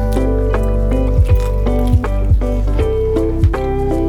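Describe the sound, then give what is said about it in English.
A thick drink, Trapicante, glugs and squelches out of a can in a steady pour, with irregular gurgling bursts and wet sloshing throughout, no voices present. “Oh, now it's coming out.”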